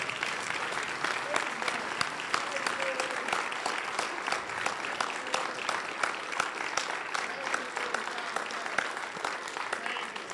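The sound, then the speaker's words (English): A large audience stands and claps steadily and enthusiastically, a dense, continuous wash of applause that stays loud and even for about ten seconds with no talking over it. “And please stand up and clap for them, please, because they totally deserve this.”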